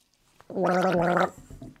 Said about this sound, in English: I am drinking Jason Momoa's water. When we started the show, Jason Momoa's company, Manu Nalu, kindly said that they could be the official water of our show.